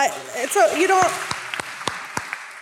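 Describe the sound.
Audience applause: a brief burst of voices and cheering gives way to a handful of sharp, separate claps at a steady, slowing pace, fading out.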